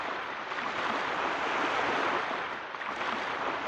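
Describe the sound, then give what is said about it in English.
A steady wash of rushing water, like surf or waves, in a theme song played from an MP3, fills the whole stretch with a dense, even hiss that barely rises or falls. No voices or other sounds stand out. “Some water in there.”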